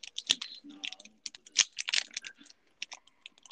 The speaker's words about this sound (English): Are you working? It sounds like you're typing. No, I was opening my Godiva chocolate. Solid. Sorry, my Ghirardelli.